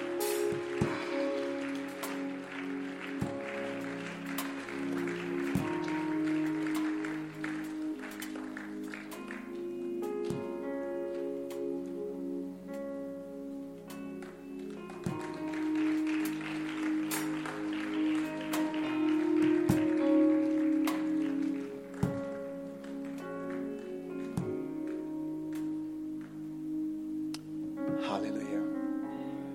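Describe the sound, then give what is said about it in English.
An audience claps during a church altar call, in a dense, steady patter beneath sustained tones of music and voices, with sharper accented beats cutting through every second or two at a moderate level. “Your clapping is not encouraging them to come.”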